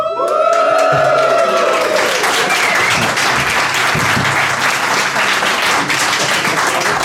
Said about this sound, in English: Hang on, before he does that, I want to see if I can get another round of applause for the episode number.